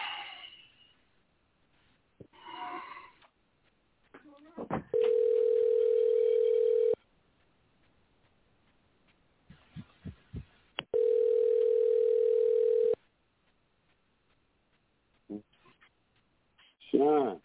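An outgoing phone call to a person in the industry rings twice, each ring a long, steady, loud electronic tone separated by a few seconds of quiet, with faint muffled noises and brief vocal sounds in between.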